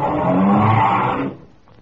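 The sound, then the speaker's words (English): A car engine turns over and roars to life, a loud, rough, low rumble that holds steady for just over a second before dropping away to quiet. “The car starts up again.”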